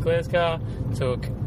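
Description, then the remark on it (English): A steady low engine rumble from inside a moving car out for a cruise fills the background, while a voice makes short tonal vocal sounds over it. “And we're just going for a cruise in the Gulf.”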